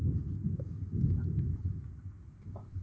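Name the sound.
thunderstorm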